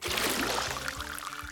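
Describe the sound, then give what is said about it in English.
A steady stream of water pours and splashes continuously out of a cactus, fairly loud, with a gurgling low rumble underneath and no voices. “Now, first, let me help you get some water. This cactus right here has everything you need.”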